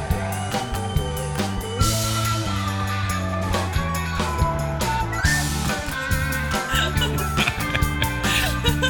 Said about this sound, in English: It's like a melody explosion. What a beautiful duet. That was nice to hear you playing the recorder and me playing the organ.